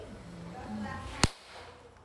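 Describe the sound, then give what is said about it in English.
A single sharp, loud slap cracks out partway through, sudden, standing out against a low murmur of background noise before things go quieter. “Yo, that was a good slap.”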